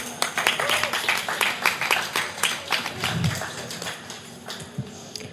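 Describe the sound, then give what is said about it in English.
An audience at the CC Beirut Creative Commons event claps together for the artists, media agencies and presenters, a dense patter of many overlapping sharp claps at a steady pace, moderately loud, thinning out slightly toward the end. “Let us have a big clap for everyone.”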